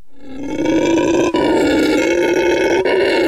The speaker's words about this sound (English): That just made me think of the same thing I brought up then, which is the weird sound of hearing a howler monkey in the dawn. Like, pretty scary sound to hear. You mind calling up a howler monkey?